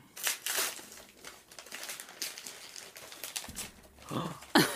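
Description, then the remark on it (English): Wrapping paper with a little bear pattern crinkles and rustles in sharp, irregular bursts as a football-shaped gift is unwrapped and the paper crumpled, with a louder crunch near the end. “I wrapped it in some little bear paper.”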